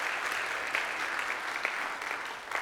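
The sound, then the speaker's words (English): Steady applause from a church audience thanking the organizers of an event, many hands clapping in a dense, continuous patter at a fairly even loudness throughout, with no voices standing out. “Would you give them a little hand clap and say thank you?”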